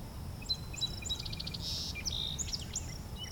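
A wood thrush sings far off: a faint string of fluty, chiming notes and a brief trill, heard over a steady low outdoor rumble with no one talking.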